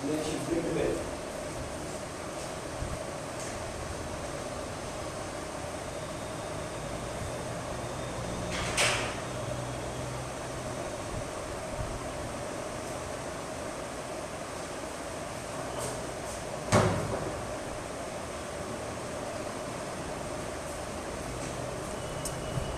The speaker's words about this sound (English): I'll just come back because I have to open the door. The woman will come to clean.